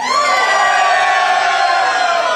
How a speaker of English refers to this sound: I just want you guys to shout out who you would prefer to win this game. Auburn versus Georgia. So hold on just a second. Hold on. So just by a show of cheer, if you would prefer Georgia to win this game, let me hear you.